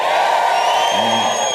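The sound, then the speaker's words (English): A large crowd shouts and cheers loudly in a sustained, dense roar of many voices, in answer to being asked how many are recipients of God's grace through Jesus Christ, with a brief lower yell rising out of the noise toward the end. “Now I want to see by show of shouts, how many of you are a recipient of God's grace through Jesus Christ?”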